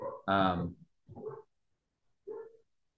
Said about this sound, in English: I got distracted for a moment because my dog started going crazy.